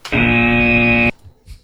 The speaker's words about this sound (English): That ankle bracelet starts beeping again.